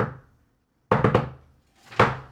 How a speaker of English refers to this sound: No, you remember the secret knock and you pull it off.